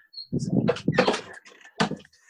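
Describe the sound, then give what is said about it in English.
A door is pushed shut, with a cluster of rattling knocks and thuds followed by a final firm click, while faint high chirps sound in the background. “I'm just going to close the door so the bird.”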